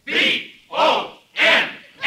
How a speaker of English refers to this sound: And as I ran out into the field, the crowd went wild.